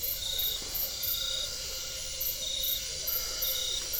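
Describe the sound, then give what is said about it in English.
A cricket gives short, repeated trills at a steady rhythm from vegetation next to a forest trail at night, around 9 p.m., over a continuous hum of other night insects. No voices. “A cricket gives brief trills from vegetation next to the trail, and strange frogs can be heard in the background with odd mumbling songs.”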